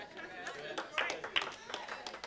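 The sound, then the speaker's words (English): A handful of scattered audience claps ring out irregularly and sharply over a murmur of voices and crowd chatter. “See, y'all, I got like a full couple claps in here.”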